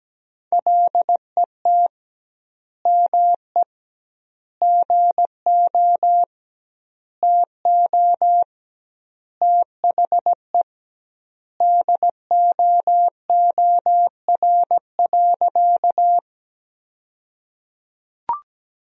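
Morse code sent at 17 words per minute with double word spacing, sending sentences built from the 300 most common words: a steady mid-pitched tone keyed into short and long beeps, grouped into words separated by clear pauses, with no voices and a brief click at the end.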